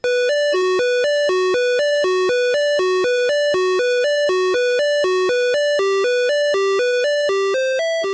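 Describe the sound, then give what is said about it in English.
The EGA PC speaker version of the music from the game Thexter: beeping square-wave tones play a quick, steady melody of short notes that alternate between higher and lower pitches, buzzy and harmonically rich, with no voices. “The first is the EGA PC speaker version.”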